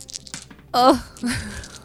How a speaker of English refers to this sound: Hold up okay. that sound of all those dice to the mic. That's oh, nice. Yeah. Listen.